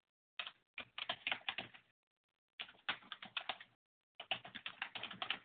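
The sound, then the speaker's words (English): Quick, clattering keystrokes on a computer keyboard come in three bursts separated by short pauses, clear, with no voices. “And somebody's typing right now.”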